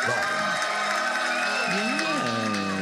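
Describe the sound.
A crowd cheers and applauds loudly and steadily to welcome host Adam Sank on the Adam Sank Show from DNR Studios, with whoops and shouted voices rising above a dense wash of clapping throughout the short burst.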